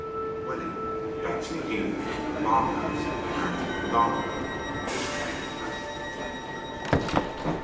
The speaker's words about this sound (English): So we've set off on the train from London Bridge.